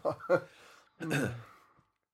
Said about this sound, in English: So it's my turn to cough now.